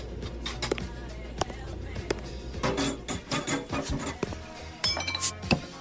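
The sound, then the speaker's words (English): A beer bottle is pried open against the sharp edge on the side of a cryogenic fishbowl: a series of sharp glassy clinks and scraping taps, fairly loud, with a few stronger knocks toward the end. “I am no more than a beer bottle opener now.”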